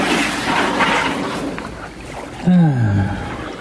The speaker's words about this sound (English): And the nice cold kayaking water. As it rubs against the microphone.